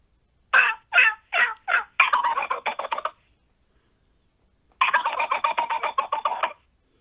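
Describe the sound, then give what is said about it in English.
A person imitates a jake wild turkey gobble, sped up to sound like a wild Mississippi Eastern turkey: four separate sharp notes, then a rapid rattling gobble, a pause, and a second fast, loud gobbling rattle, with no talking. “That's how I learned to gobble, and then I learned to speed it up and try to sound more like a wild Mississippi Eastern.”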